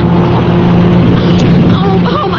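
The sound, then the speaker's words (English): A car engine roars steadily, a constant droning rumble that barely changes in loudness, as an oncoming car weaves all over the road and heads straight at the listeners' car, with faint voices rising near the end and no clear crash or impact. “Coming up this way, lickety-split? Tim, I'm afraid he's weaving all over the road again”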